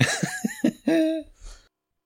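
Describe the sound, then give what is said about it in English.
A few short, choppy breathy bursts lead into a long voiced yawn that stretches out, wavers in pitch, and trails off into a soft exhale before silence. “Goddamn, can't fucking, goddamn, fucking yawning.”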